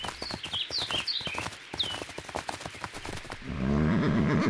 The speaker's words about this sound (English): You shot his horse! Gotta slow him down some way.